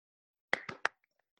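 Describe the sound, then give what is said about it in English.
Three quick hand claps in a brisk, slightly uneven rhythm, each sharp and bright with a short ringing tail, followed by a few faint soft ticks and then quiet. No one speaks. “There's the clap.”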